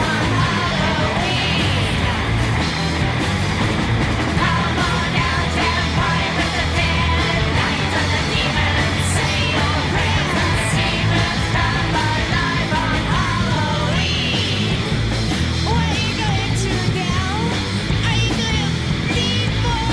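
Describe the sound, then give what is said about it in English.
A person screams loudly and at length, the strained, wavering cry sitting over a dense, constant wall of noise that never drops away for the whole stretch. “Good scream”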